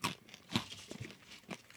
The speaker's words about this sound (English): Ooh, that's a nice crunch sound. It's a great crunch. Yeah. That's the one thing you're gonna get from a corn nut. Is a quality crunch.